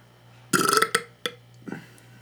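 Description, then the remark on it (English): A loud burp after drinking Sprite rumbles for about half a second, followed by a few short, fainter throaty bursts. No one speaks. “the real challenge is whoever can have the biggest burp by the end of this show.”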